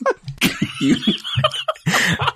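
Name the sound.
throat clearing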